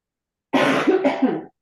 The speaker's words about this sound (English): Sorry. No worries. I'm trying to keep that little bit of the cough away, as I said earlier.